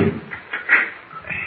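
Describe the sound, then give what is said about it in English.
Metal door bolts scrape and clunk as they are slid back to open a door, a few short grating strokes with a sharp rasp in the middle, followed by a rattling slide. “First these bolts.”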